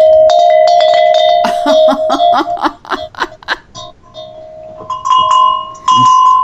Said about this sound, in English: Those are actually harmony bells that I got from Amazon to hang in the wind, and they're rustic bells made out of like a cowbell material, and the clappers are made out of wood.